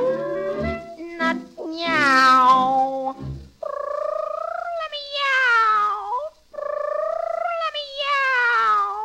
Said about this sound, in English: Come meow, come meow, come meow, my pretty kitten. Meow.